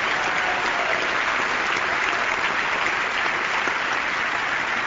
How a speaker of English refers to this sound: Should we clap too?